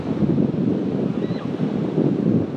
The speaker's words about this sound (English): Hardy people out there in the sea, and the tide is coming in. At the rate at which it's coming in, I would say it'll be full in about 2 hours.